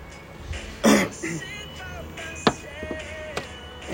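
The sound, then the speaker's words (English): A single loud cough with a throat-clearing rasp bursts out early on, followed by a few faint clicks and soft background noise. “Those gives me the cough when I say I'm ready?”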